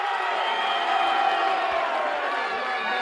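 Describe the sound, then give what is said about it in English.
A wrestling audience applauds and cheers for the Junkyard Dog, steadily for three seconds, a dense roar of clapping with scattered whoops, loud and sustained without any break. “There's quite a lot of applause for all of these men, but especially for the Junkyard Dog and Hacksaw Jim Duggan.”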